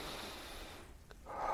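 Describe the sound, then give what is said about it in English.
Loud, tense breathing: a long forced rush of air through the nose, a brief pause, then another strained, noisy breath, with no talking, as a person demonstrates the mistake of breathing tensely while trying to slow the breath. “No, you're breathing tense and your breathing is going to be quick.”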